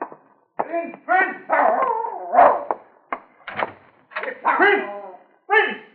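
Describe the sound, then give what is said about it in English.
A dog named Prince yelps and whimpers in a string of short, high-pitched bursts with brief pauses between them, moderately loud, with whiny, howl-like cries mixed in. “Hey, that bastard dog, sir. He'd be off digging under Master's cherry tree again.”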